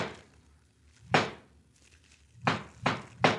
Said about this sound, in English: Yeah, that's his knock. It's him.